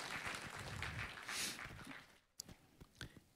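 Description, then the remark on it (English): A church audience at Harvest claps together for the people being added to the church, a dense, steady burst of applause that lasts about two seconds, then quickly dies away to a few scattered, isolated claps. “Why don't you just give a clap, and we're thankful for the people that are being added to our church.”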